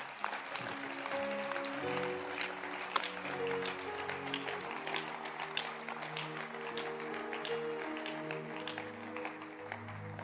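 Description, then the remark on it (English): An audience claps steadily for the full ten seconds, a dense crackling wash of many hands, with sustained keyboard chords holding underneath. “Clap your hands for this one.”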